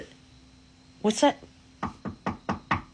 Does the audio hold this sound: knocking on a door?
yes